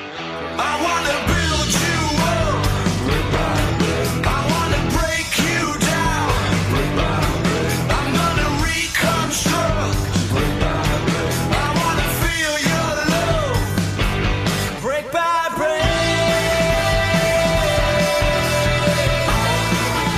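A rock song plays loudly and steadily throughout, with driving drums, dense guitars and strained, shouted vocals; no one speaks over it.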